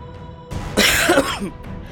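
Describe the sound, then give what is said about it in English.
A voice imitates a wet, gurgling cough of a captain coughing up blood: one rough, spluttering burst lasting about a second, fairly loud, with no words spoken. “You warp out of the teleportation, and the captain staggers up against you and coughs up a larger, more alarming amount of blood.”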